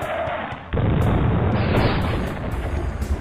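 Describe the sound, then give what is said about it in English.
A loud, rumbling roar erupts suddenly and keeps going, with several sharp booming bursts cracking through it in quick, irregular succession, like a string of explosive charges going off inside a volcano. “Its ascent was accelerated by the explosions going off all around them”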